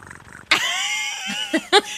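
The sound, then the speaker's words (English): A person imitates a cat purring: a soft, rattling purr gives way to a louder, drawn-out catlike vocal tone, then a few short voiced bursts. “Yeah, she couldn't do the purring sound. Can you do the purring sound?”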